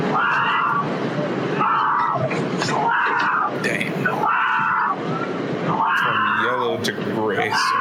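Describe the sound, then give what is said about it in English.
Several people in a video scream and shout over one another in loud, overlapping bursts, with a rushing, splashing wash of noise underneath that never lets up. “So I seen this video before, but I was trying to figure out where the fuck is the screaming coming from.”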